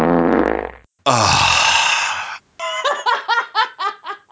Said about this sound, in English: That's the new … farting soundbite.